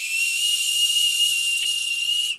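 whistling kettle

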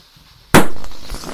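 balloon popping

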